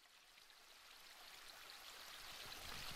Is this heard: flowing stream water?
yes